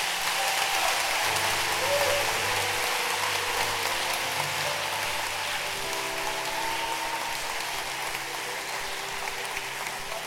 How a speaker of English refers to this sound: Clap your hands for your pastors.